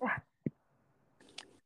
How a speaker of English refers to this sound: I work hard, and the dog wants to say hello.